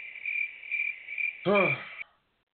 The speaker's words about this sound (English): More crickets. More fucking crickets.